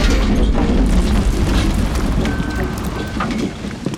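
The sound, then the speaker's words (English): A huge pile of donuts dumped out in a dense, steady rumbling rush of soft thuds lasting about four seconds, easing off slightly toward the end. “All right, dump the donuts.”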